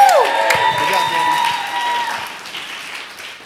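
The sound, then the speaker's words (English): An audience claps together in a dense, steady burst of applause for a 17-year-old student leader at Elevate who is about to speak, with a few shrill whoops and whistles at the start, gradually thinning and fading over a few seconds. “Let's give him a round of applause, you guys.”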